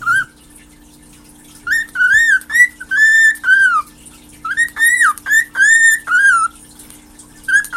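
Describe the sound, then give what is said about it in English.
A rehomed pet companion bird whistles in a run of bright, warbling phrases, loud and rhythmic, starting after a short quiet pause and continuing with brief gaps. No one speaks. “is not only a companion bird, but is also a rehome bird.”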